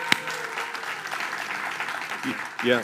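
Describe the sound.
An audience claps steadily for a family one more time, a dense, even patter of many hands filling the whole moment, with a voice briefly rising through the applause near the end.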